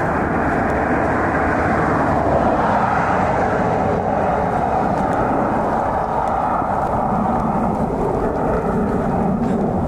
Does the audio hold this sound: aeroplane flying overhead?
yes